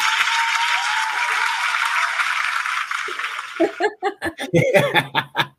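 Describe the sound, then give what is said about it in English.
A canned applause sound effect played from a phone: a dense crowd clapping for about three seconds, then fading into bursts of laughter and cheering voices. “I had a hand clap, but my phone. Here we go.”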